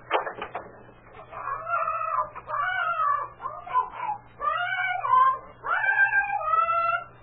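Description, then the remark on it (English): A parrot in a barn squawks and chatters in a long, rasping, warbling stream of calls, loud, with brief pauses between bursts over a faint steady low hum. “It's a parrot.”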